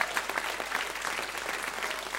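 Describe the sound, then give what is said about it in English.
An audience claps hands together in praise of the Lord, a dense, steady wash of many overlapping claps filling the room at moderate loudness with no voices standing out. “And could you just give the Lord a real hand clap of praise?”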